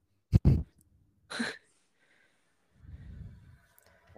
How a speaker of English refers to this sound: Sorry, just burped.